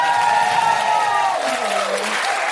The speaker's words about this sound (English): A huge round of applause for my incredible co-pilot,